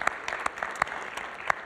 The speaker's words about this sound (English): So again, because of your generosity, a few text messages went around and we were able to send them $3,000 the same day. So again, thank you. And clap for that.